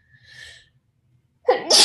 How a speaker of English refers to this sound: Excuse me. Not a good time to be sneezing,